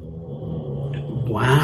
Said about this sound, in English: And a snoring dog.